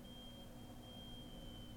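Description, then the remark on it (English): A fire alarm going off somewhere in a building sounds as a steady high-pitched electronic tone that holds without a break under low background rumble, with no one speaking. “Fire alarm's going off somewhere in the building. It's a backup alarm, isn't it?”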